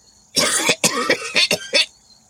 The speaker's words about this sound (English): Over time, her cough grew worse.